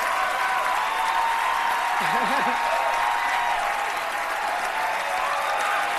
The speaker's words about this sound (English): Woo! Everyone's clapping.